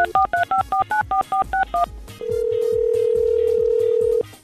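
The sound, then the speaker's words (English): The Move 100 radio station calls a contest winner: a rapid run of about a dozen touch-tone dialing beeps, followed by a single long, steady ringback tone lasting roughly two seconds. Clear, with no voices. “All right. Let's give them a call.”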